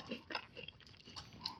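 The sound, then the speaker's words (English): Crunchy chewing of hard candy, with repeated bites and crackling crunches spread irregularly across a short stretch, fairly loud with no talking. “Like, they're not hard to chew.”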